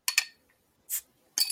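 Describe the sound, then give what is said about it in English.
Sierra Nevada Bigfoot barley wine style ale poured into a glass: two quick glassy clinks, then a brief hissing, fizzy rush and a final bright clatter of glass, all fairly quiet with no talking. “It's got a nice pour to it.”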